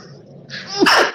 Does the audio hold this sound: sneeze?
yes